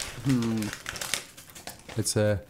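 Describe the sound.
Busy crinkling and rustling of shiny red reindeer-patterned wrapping paper being torn and handled as a present holding a DVD is opened, with a steady stream of sharp crackles, while a couple of short voiced sounds break in over it.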